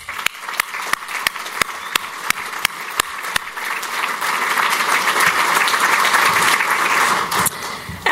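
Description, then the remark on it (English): A crowd gives a round of applause for the airport's employees, starting with a few sharp, evenly spaced claps that quickly swell into a loud, dense round of clapping, which holds steady before tapering off near the end. “So ahead of this holiday season, I'd like to ask for a round of applause for our great and growing airport family.”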